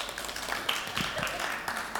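A crowd applauds with a steady, dense wash of many overlapping claps, fairly soft and even throughout, with a faint murmur of voices mixed in.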